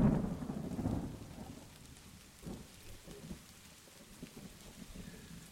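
A steady patter of rain fills the scene, with a deep, loud rumble of thunder rolling through at the start before fading into softer murmurs. No voices.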